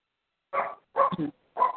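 A dog barks three times in short, evenly spaced bursts, the middle bark doubled, clear with silence in between and no talking; the barking comes from the dogs Charlie and Daisy.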